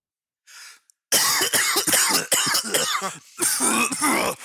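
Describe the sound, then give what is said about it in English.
A short throaty rasp, then a loud fit of harsh coughing, many rapid hacking coughs run together with barely a pause for about three seconds. “You know what I could use? A used cough drop.”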